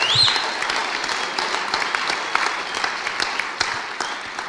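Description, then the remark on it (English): An audience at a church event claps for guests from the Flourish team joining the show, a steady, sustained round of applause, a dense wash of many hands that stays fairly even in loudness throughout, with a brief whistle near the start. “Can you do me a massive favour and give these guys a massive round of applause as they come to the show today?”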